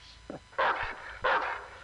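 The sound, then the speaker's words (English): A dog barks twice, loud, with a short yip just before the first bark and a brief pause between the two sharp barks. “Oh no, the dog realized it wasn't his birthday after all.”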